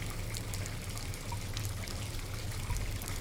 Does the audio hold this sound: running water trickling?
yes